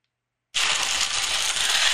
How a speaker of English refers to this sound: All right, not too loud. You can hear the ice blending, I think. I put a lot of ice in here. I don't know if I put too much. They said you can turn it upside down. It's blending.